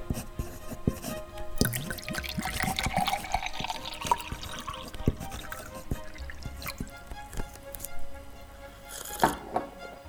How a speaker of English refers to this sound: At this point, I had a wonderful idea. I thought I would try and pour the brandy out of the bottle, which was mostly full, into my glass.